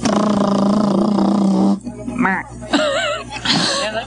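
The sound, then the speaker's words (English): A voice imitates a buzz-in noise for a quiz game, a loud, steady, nasal buzzing hum lasting under two seconds, followed by brief animated talking and laughter. “please at least, whether you have an answer or not, please make a buzz-in noise for me.”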